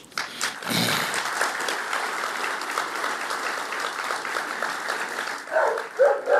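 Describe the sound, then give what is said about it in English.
Steady applause-like crackle fills most of the stretch, then a dog named Broad lets out a few sharp barks in quick succession near the end. “Now, my dog Broad is a serious Irish country fan. That's why he just wanted us to get on with the music.”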